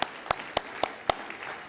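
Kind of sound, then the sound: crowd, audience clapping hands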